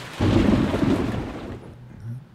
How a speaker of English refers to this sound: It's not even raining outside. I know, huh? It's not rain. It's just thunder.